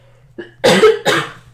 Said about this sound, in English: Sorry, I have to cough again.